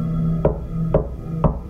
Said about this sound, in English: That was until I heard three slow and heavy knocks at my closed bedroom door.